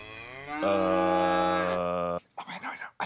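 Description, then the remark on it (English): A single long, loud cow moo, low and droning with a slight rise midway, lasting about two seconds before a voice briefly speaks. “A plague of death of your cattle.”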